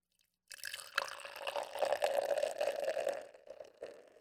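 Nevada's Hazy Little Thing hazy unfiltered IPA (6.7% ABV) pours steadily into a glass, a gurgling liquid stream with fizzing, bubbly texture that runs for about three seconds before tapering off. No one speaks.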